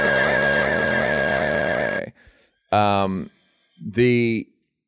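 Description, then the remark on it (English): A person imitates a horse's neigh with a long, loud, wavering whinny, then two shorter whinnying bursts after a brief pause. “Give me the horse noise.”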